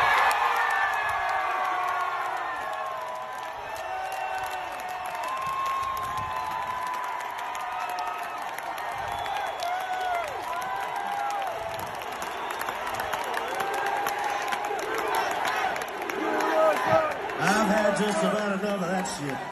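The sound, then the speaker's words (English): A large concert crowd cheers and shouts continuously as a mainstream country artist comes out, a dense roar of many voices with whoops and some clapping, surging louder toward the end. “That's a mainstream country artist, really big, coming out in a big crowd, very responsive.”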